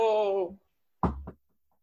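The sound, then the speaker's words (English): A drawn-out sung vocal tone fades out, then after a brief pause come two quick knocks on an office door, the second slightly softer, followed by silence. “I'm knocking on Mr. Armstrong's door.”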